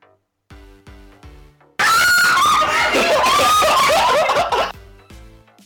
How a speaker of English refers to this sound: There's just been people screaming. Really? Yeah. Literally, every clip has just been of some girls screaming.